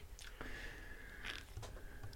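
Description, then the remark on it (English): A sharp pop from a beer bottle top gives way to a brief fizzing hiss as the beer foams, then wet sipping and swallowing of the beer, all fairly quiet with no talking. “I had to take a sip of that beer real quick. Popped the top and it got a little foamy.”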